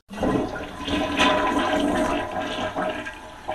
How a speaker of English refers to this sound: It seems there's a right and a wrong way to flush your toilet.